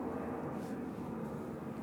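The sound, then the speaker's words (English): A steady, broad engine roar from a large airplane passing right overhead on the flight path to Manchester Airport, heard from a mountain, a dense low rumble with a whooshing hiss on top, holding constant throughout with no voices. “Right over the flight path to Manchester Airport, aren't we?”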